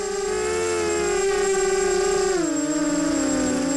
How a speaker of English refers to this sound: Can you hear the drone at all? Can you hear it outside at all? It is arriving now. Sir? That's the noise? That's the drone. Yeah, the drone is arriving now.